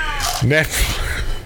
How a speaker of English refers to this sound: was that a cat?